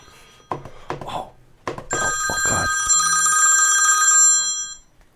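A telephone rings loudly, one sustained bright electronic trill lasting about three seconds. It follows a few short thumps and rustles, and no one speaks.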